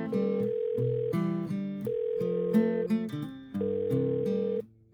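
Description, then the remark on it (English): A cell phone call rings on the line, a steady run of electronic tones shifting between pitches for several seconds before cutting off near the end. No one speaks. “He picked up his cell phone after a gym session and called Vicky. It rang a few times”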